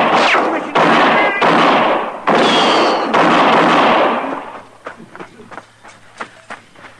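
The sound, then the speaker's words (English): A burst of gunfire after an order to shoot during a standoff with armed men at a shack: several loud, booming shots in quick succession with ringing tails, then a string of quieter, sharper cracks spaced irregularly as the shooting tapers off. “Shoot him.”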